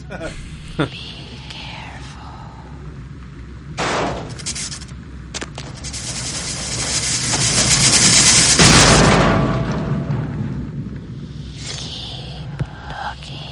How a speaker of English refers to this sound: he will try to kill you through this whole thing at one point by dropping a goddamn elevator on you.